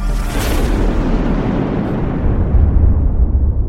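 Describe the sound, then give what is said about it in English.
A thunder sound effect: a deep, rolling boom with a sharp crack at the start, then a long, loud rumble that swells again toward the end. No voices. “It's Daily Thunder, booming out the truth of Jesus Christ live every weekday morning from the Ellerslie campus in Windsor, Colorado.”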